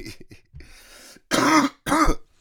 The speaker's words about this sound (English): And, you're going to have to put up with a little bit of cough.